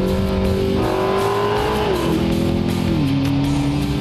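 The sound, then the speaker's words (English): A powerful turbocharged road car engine roars loudly, its pitch climbing and then dropping in a couple of steps as the gears change and the turbos kick in, with no voices over it. “You hear the turbos kicking in.”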